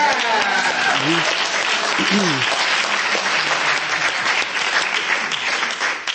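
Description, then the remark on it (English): A crowd gives itself a round of applause, clapping steadily for about six seconds, a dense, loud wash of applause with a few voices whooping or calling out early on. “But I would like you to give yourself a round of applause, because you being here means you're serious about your health and wellness.”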